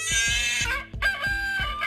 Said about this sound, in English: Like a rooster. It got a lot of stuff. I'm probably going to use it throughout the podcast.